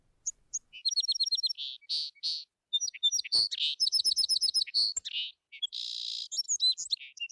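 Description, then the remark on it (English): A small songbird sings a quick, bright song of high chirps, trills and rapid twittering phrases, clear with brief pauses between bursts and no other sounds. “Little bird sang him a little song, and inside she felt so noticed and seen and cared for.”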